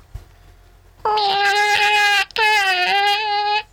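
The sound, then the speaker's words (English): A person imitates a cat, giving two long, drawn-out, whiny meows back to back with a brief gap between them, a specific meow meaning 'I need help wiping'. The voice is loud, with no other sounds. “Okay, this is the most important meow for me, and it's the I need help wiping meow.”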